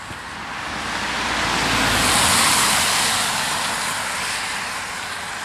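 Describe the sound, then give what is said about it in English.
A broad, steady hiss of traffic that swells to a peak midway and slowly eases off, like a car rushing past on a wet road, with no voices. “Now he just walks in the night and the rain, smoking while cars hiss through the ambient haze.”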